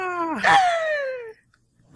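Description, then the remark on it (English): A voice makes a single loud, drawn-out screech, strained and harmonic, swooping up in pitch and then gliding slowly downward for over a second before cutting off into silence. “And I would like make the little screeching noise with my mouth as I jump.”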